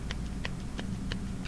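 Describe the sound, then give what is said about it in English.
A single right hand clapping and clicking makes five short, dry snaps in a steady, even rhythm, each sharp and fairly light, over a low continuous background hum with no voices. “That's my right hand clapping. Also my right hand clicking.”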